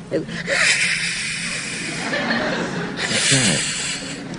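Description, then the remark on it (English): A person imitates an angry swan's hiss, like the bride's hiss at Boris Karloff's creature: a harsh, breathy, sustained hissing that runs for several seconds, broken by a few voiced snorting and chuckling sounds, with no clear words. “I let out a noise like a swan. If any of you have ever seen an angry swan in the park, I don't know.”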